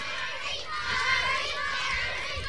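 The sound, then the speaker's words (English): A crowd of children's voices cheers and shouts together for a boy who is running, in a sustained, fairly loud wash of sound, with no single voice standing out. “Give him a bit of a cheer.”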